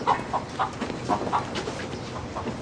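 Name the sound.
chickens clucking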